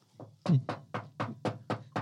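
A quick, steady series of about eight knocks on a door, evenly spaced, each rap sharp and fairly loud, with no talking over them.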